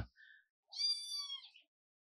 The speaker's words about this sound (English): Oh, yeah, my pretty cat. Yeah, this is Chiba right here, man. My baby girl.